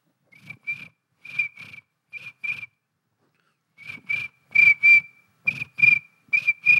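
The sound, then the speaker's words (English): A person whistles in imitation of crickets chirping: short high-pitched double chirps repeated in a steady rhythm, growing louder toward the end, with no talking. “Every time he tries to go to sleep inside his bed, he hears...”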